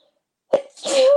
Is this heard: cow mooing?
no